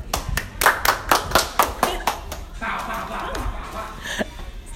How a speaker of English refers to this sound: Thank you. Round of applause.